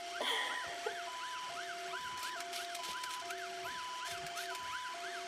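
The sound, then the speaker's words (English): A toy truck siren plays alone, a thin electronic two-tone wail alternating high and low with a quick whooping warble layered over it, repeating steadily and evenly at moderate volume. “A toy truck.”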